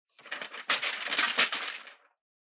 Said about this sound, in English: it's not all that helpful to just stand there rustling papers.